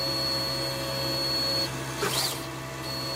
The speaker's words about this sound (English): I'm standing next to an inkjet printer resembling a conventional desktop model, but about as big as the kitchen sink.